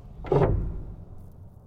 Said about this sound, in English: and the door slams violently shut.